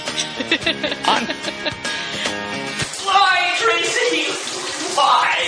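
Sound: shower water running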